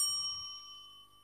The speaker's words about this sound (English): All right, I'm going to give a bell.